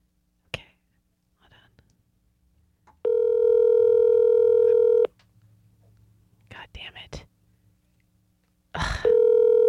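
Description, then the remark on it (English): An outgoing phone call rings unanswered with a steady electronic ringback tone, two long loud bursts separated by a pause, while faint whispers and small clicks fill the quiet gap between rings. “This piece of shit knows not to answer his phone.”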